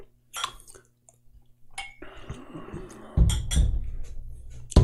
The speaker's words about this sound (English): What's up with the stupid like slapping on the table thing? I don't do that. It's an old like college thing for shots.